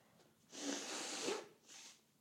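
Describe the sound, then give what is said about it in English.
Someone blows their nose: a long, forceful, breathy honk followed by a shorter second blow, both loud with no talking. “I gotta blow my nose.”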